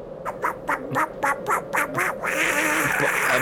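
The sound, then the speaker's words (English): A rapid run of about eight raspy, Donald Duck-like cartoon quacks from a character who is a duck, fairly loud, followed by a steady wash of noisy hiss through the final second. “And also, I like that he sounds like Donald Duck when he is a duck.”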